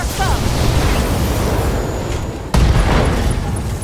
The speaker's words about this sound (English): SRM ammo explosion! Left torso destroyed. Left arm destroyed. Ammo explosion. Pilot was injured.